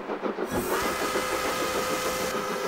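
A steam train engine of the Essex Steam Train Clipper Dinner Train, just outside Hartford, Connecticut, runs with a steady, broad rumble, pulsing rhythmically under a faint tonal whine. It swells in abruptly after a brief quieter moment and carries on loudly with no voices.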